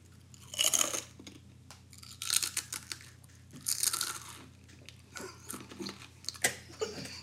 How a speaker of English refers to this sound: I eat chips.